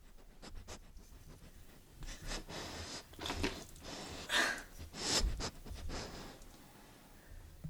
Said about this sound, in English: All right, some sniffing. That's all you get.